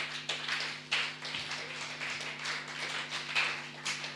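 An audience applauds steadily for about four seconds, a dense wash of many hands clapping at once with a few sharper claps standing out, fairly quiet and with no talking.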